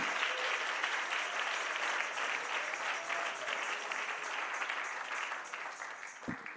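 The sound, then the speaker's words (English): A church audience claps steadily together to the Lord, a dense, continuous wash of many hands applauding at an even level, with a faint murmur of voices beneath and a brief low thump near the end. “Come on, everybody, clap your hands to the Lord together.”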